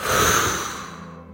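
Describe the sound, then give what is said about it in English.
A single forceful, aggressive exhale through the mouth during a guided breathing exercise, loud and airy at the start, then tapering off over about a second. No talking. “Nice and aggressive. Breathing in, clear air, and let all that shit go.”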